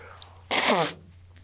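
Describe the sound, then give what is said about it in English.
A single loud, blustery nose blow, a short rush of breathy noise with a honking, falling tone in it, lasting about half a second over a low steady hum. “I'm going to blow my nose again.”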